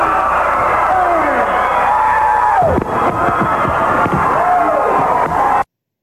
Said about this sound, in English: Sting finished it off with a scream for you